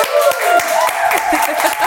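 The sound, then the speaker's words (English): A steady burst of audience clapping, dense and fairly loud, with sharp claps standing out from the wash and some high voices or whoops mixed in, as a singer and actress is introduced as a guest on Hollywood Unlocked. “She's a singer, actress, and she goes by the name of …. Clap it up.”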